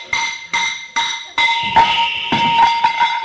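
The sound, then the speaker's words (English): A sledgehammer strikes a metal water pipe under a house in a series of loud, ringing clangs, four evenly spaced blows followed by quicker, overlapping hits that keep the bright metallic tone humming. “Oh, Julius, Julius, you've hit the water pipe.”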